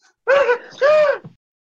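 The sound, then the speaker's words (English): A female dog lets out a drawn-out yawn that rises into a whine, in two closely spaced, arching vocal bursts, fairly loud, with nobody talking. “She's got a yawning.”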